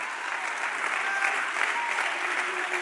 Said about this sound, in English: I need somebody to clap if you believe. If you need healing, I need you to clap if you believe. If you need deliverance, I need you to clap if you believe. If you need God to open a door in your family, I need you to clap if you believe.